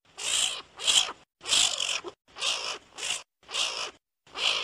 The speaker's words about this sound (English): It's kind of like between a bird and a dog. Yeah, so for the listeners, Matthew Peterson just sent me a video, like a YouTube clip of... skunk sounds.